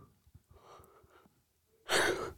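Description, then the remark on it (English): A person yawns: a soft, drawn-out breathy stretch with faint voicing, a short pause, then a loud, airy sigh of breath at the end. “I don't mean to be yawning on y'all.”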